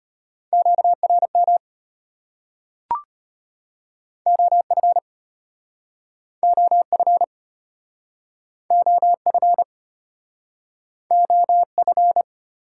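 Fast Morse code beeps at 25 words per minute in a steady mid-pitched tone, sending amateur radio contact (QSO) elements in five quick bursts of dots and dashes with short pauses between, plus a single sharp click early on. No voices.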